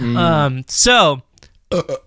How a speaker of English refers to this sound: God, I got to stop drinking beer when we're doing this. I can't stop burping.